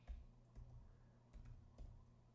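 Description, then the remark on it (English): Scattered keyboard clicks typed one-handed at an uneven, slow pace, a handful of sharp keystrokes over a low steady hum, with no voices. “Hold on, typing one-handed.”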